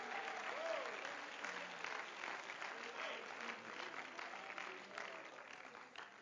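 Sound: audience clapping hands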